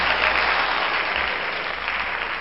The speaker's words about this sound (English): I want to talk about the acting in this. Oh, the acting was superb. Can we just applaud the actors real quick? Yes. Because there we go.